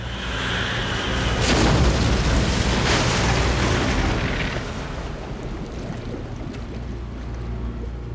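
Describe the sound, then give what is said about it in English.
A heavy, booming crash of a boat cracking in two on the ocean, with splintering bursts early on, then a deep rolling rumble of churning water as it sinks, gradually settling. No voices. “Under Merlin's command, the ocean cracked the boat in two. It sank into the deep, the water swallowing the baby's helpless cries.”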